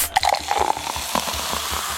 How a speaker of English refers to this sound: He's opening the can.